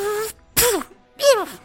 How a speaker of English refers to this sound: Did you sneeze on me?